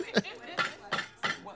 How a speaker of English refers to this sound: Oh, my God. I'm sorry. Oh, what is that? I've shattered your bread. Sorry. What is that? It's not my bread.